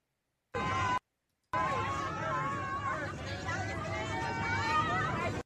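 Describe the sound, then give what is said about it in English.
A dense babble of many overlapping voices fills a crowd on a plane, steady and fairly loud, with a brief cut to silence near the start before the chatter resumes. “If you're listening to the audio version, this is literally just like a crowd of people.”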